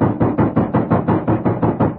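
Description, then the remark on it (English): A loud, rapid pounding on a door, about ten heavy knocks in an even, insistent rhythm, with no voices. “And then, there was a loud knock on the door.”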